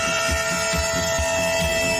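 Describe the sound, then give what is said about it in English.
A train horn blares one long, unbroken chord for the full two seconds, loud and steady, over a low rhythmic thumping that pulses about twice a second. “Oh, well, you'll get a train.”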